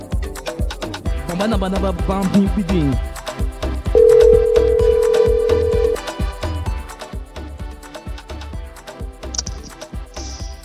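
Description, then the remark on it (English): A phone line rings as a caller is brought onto the line on a morning broadcast, a single steady electronic tone lasting about two seconds, clearly audible over a busy, rhythmic music bed that continues before and after. “Let's get her on the phone line.”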